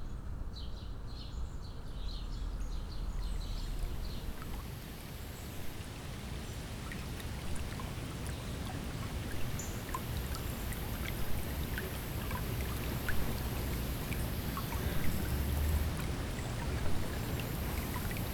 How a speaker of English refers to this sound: It involves a creek just north of me at Taylor Creek Park, in the east end of Toronto here.